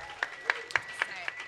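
A faint, thin round of applause for a contestant on the Quiz Box: about five sharp claps at a steady, even pace, with no voices over them.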